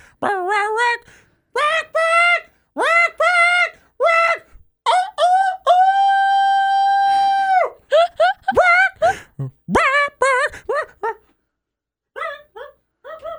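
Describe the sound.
A man sings a song for an iPod Idol entry entirely in chicken-like clucks and squawks, with choppy bursts, a long sustained squawking note in the middle, and quick clucking runs before trailing off.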